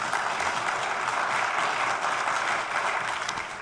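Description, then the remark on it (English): An audience applauds to welcome a guest speaker, a dense wash of many hands clapping at an even, fairly loud level that holds throughout and eases slightly at the end, with no clear voices. “Okay, y'all clapped.”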